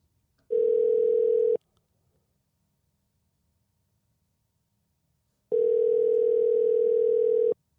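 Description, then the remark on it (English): A telephone ringback tone sounds twice while a call is placed to a garage door company, each steady buzzing ring lasting about a second, separated by roughly four seconds of near silence. No one speaks. “We're going to call another one.”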